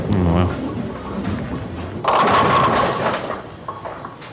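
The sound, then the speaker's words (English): A bowling ball rumbles down the lane, then strikes the pins with a sudden loud crash, knocking over 9 pins and leaving 1 standing. The pins clatter and scatter for over a second before the noise dies away. “You knocked over 9 pins, leaving 1 pin standing.”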